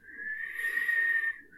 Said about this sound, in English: I can't whistle. Like, I can, like, I can... Like, that's a nerd. Like, I can't, like, get a good whistle, and I can't change pitch really. So I just go...